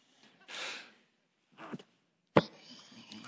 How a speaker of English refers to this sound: Excuse me. Sneezes back.